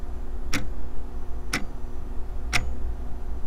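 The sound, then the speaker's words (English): A clock ticks three times at a steady one-per-second pace, each tick a crisp click over a low, constant background hum, with no voices. “as Caden is like sitting there, he is watching a clock that is ticking away at time.”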